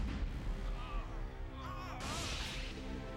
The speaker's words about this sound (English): Okay, that was kind of cool. Okay, that was kind of funny. What was that? Those were explosions.